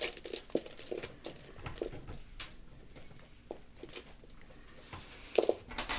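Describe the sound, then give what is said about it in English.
Small hard objects clatter and click irregularly as someone rummages through a box of dice to pick out the dice needed, a steady patter of light knocks with a few sharper rattles near the end. “Oh, can you pass the dice box along? I'm just trying to figure out what dice I need to grab for this because I need multiple of”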